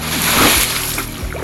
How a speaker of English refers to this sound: Then he sprang up, up, off the board, flying. Jabari hit the water with a splash. Down, down, down he went, and then back up.